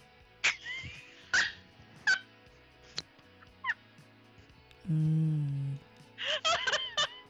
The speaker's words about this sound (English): You like that coughing?